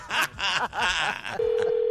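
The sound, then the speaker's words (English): Telephone dialing tones at moderate volume placing a prank phone call, preceded by brief voice-like sounds, then a steady, unbroken line tone holding through the final half second. “Prank phone call.”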